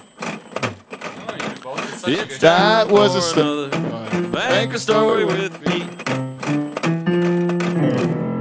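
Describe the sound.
A short, bright show jingle played on an electronic keyboard, with a voice singing along over sustained melodic notes after a brief spoken opening, ending on held chords.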